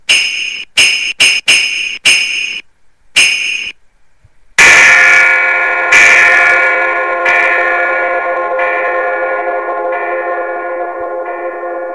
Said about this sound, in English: Well, today I looked out my window into the street by our house and I saw a man who looked like a shadow with horns. His eyes glowed orange, and seeing him scared me a lot. He was ringing a bunch of bells.